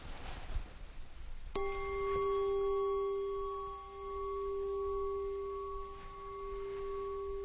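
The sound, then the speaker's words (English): A single strike of a meditation bell rings out after a moment of quiet, its bright metallic tone holding steady and slowly fading over several seconds, with no voices present. “Okay, we don't hear bell.”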